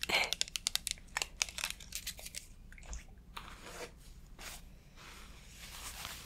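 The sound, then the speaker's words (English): Tissue paper crinkles and rustles in a quick, irregular flurry of crisp bursts at first, then settles into softer, steadier rustling and a few scattered crackles. “Take some tissue.”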